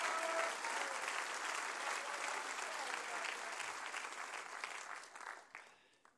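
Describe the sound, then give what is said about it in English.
An audience claps their hands in a dense, steady burst of applause that holds strong for several seconds, then thins out and fades away at the end. “Come on, you ought to clap your hands about that today.”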